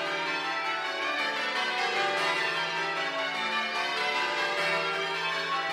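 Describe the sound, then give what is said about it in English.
Several church bells in Norfolk, England, ring together in a dense, continuous wash of overlapping metallic tones, the pitches shifting as strikes follow one another steadily, recorded for use in bell-ringing simulators. No voices are heard. “Yes, my recent project, something that started off just as an experimental idea that's now evolved into something very obsessive, and that is recording the sounds of Norfolk's church bells for use in ringing simulators.”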